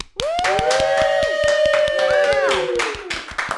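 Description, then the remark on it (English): One person clapping in a quick, steady rhythm, about twenty sharp claps in a few seconds, while a voice holds a long, wavering cheer-like tone over them. “Thank you for clapping for yourself,”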